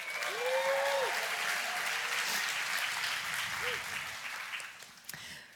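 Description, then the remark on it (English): A crowd applauds a group of women, steady clapping for several seconds, the dense clapping fading slightly toward the end, with a brief whistle or whoop rising above it. “You guys can clap for them.”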